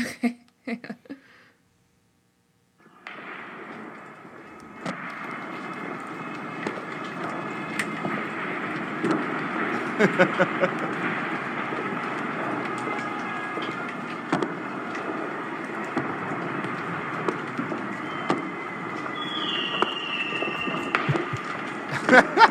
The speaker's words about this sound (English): That does straight up sound like the end of the world. Yeah, it's like a few of those are definitely fireworks, but I'm pretty sure some of them were guns too.